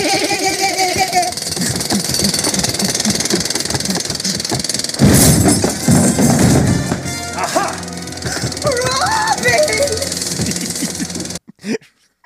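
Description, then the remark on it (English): A jackhammer rattles loudly and harshly for a couple of seconds in the middle, surrounded by busy, noisy sounds and barking-like vocal yelps before and after. “comes back with a jackhammer.”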